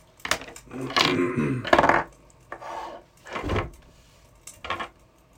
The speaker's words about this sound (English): You pass a door on your right. I'm gonna go in the door. It's the similar thick, heavy wooden door. Oh, can I open it? It's locked. Can I knock on it? Okay, you knock.